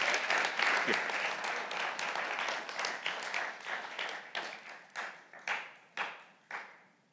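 An audience breaks into dense, steady applause that gradually thins out, ending with a handful of scattered individual claps spaced apart over the last few seconds.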